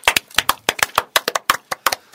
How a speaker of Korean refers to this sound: 자, 주말에 일요일날 대한민국 제20대 대통령 민주당 후보가 선출이 됐습니다. 축하합니다. 박수.